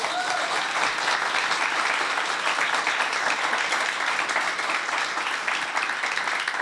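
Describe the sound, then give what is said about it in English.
Sustained applause from an audience for an author at the start of an interview, a dense, steady wash of many hands clapping at once, loud and even throughout without pauses. “Can I get one more round of applause for Jenny Odell?”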